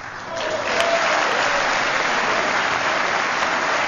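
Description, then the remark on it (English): A large crowd at the State of the Union claps in sustained, dense applause for a 102-year-old woman who waited hours in line to vote. The applause swells quickly and holds steady and loud as a continuous clatter. “She was at the State of the Union and received that big round of applause for surviving all of those hours, and I guess surviving 102 years.”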